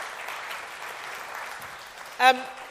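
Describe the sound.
Audience applause rolls on as a steady, even wash of clapping, then a short, loud voiced shout breaks out near the end before the clapping continues.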